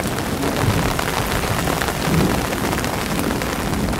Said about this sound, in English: Another crack of thunder rolls across the dark, ominous sky, and the rain becomes ever so more intense.